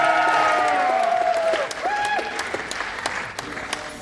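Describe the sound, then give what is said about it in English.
An audience breaks into steady, dense applause lasting the whole stretch, with loud whoops and high whistles rising over the clapping before it tapers slightly at the end. “Give the sexy lady a round of applause.”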